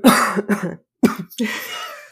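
A run of harsh coughs: two quick hacks, a short pause, then two more, the last one drawn out and raspy like a throat clearing.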